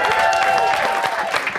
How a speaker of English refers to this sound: That's the hypothetical situation, you guys. Give these guys all a round of applause.